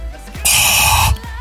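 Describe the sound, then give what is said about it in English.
A voice imitates heavy Darth Vader-style breathing: one loud, hissing, rasping breath lasting under a second, framed by brief quieter breath sounds, with no talking. “I was going to spare you the heavy breathing, but I could not resist.”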